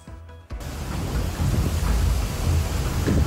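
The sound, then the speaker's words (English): A loud, steady roar of storm wind and pouring rain on a cruise ship rocked by a storm in rough waters off Charleston, South Carolina, kicking in abruptly after a brief quiet moment, with deep rumbling underneath that swells slightly as it continues. “New video this morning shows a cruise ship being rocked by a storm.”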